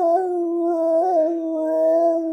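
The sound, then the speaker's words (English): A voice imitates a dog's pained howl, as the dog Daisy singing a national anthem: one sustained, mid-pitched wail that wavers slightly in pitch and holds steady in loudness for a couple of seconds, with no other sounds. “It sounds like somebody is trying to pretend like they're a dog being tortured.”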